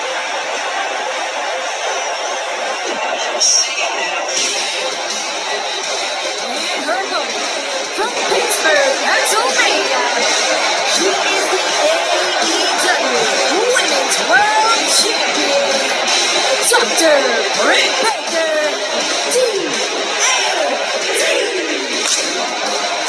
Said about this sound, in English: Listen to the reaction from this crowd, Excalibur, on place. A true hero's welcome to the AEW Women's World Champion, Taz.